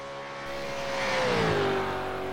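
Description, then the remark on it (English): A supercar racing engine roars at high revs on a flying lap of the 5.77 km circuit known as the Cathedral of Speed, its loud, steady whine swelling and then sliding lower in pitch as the car blasts past at speed. No one speaks. “At 5.77 k's, this is the second longest lap on the supercars calendar, and at 195 k's an hour average, it's the fastest track to this point a supercar will have ever raced. There's a flying lap of the Cathedral of Speed.”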